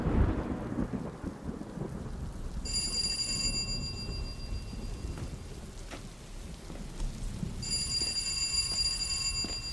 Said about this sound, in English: You've got all the St. Lawrence pouring down your front. Why'd you leave the house in a storm like this? In the middle of the night, no less.